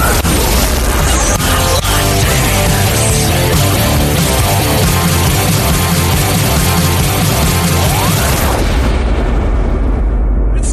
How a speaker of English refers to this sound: Awkward radio segue.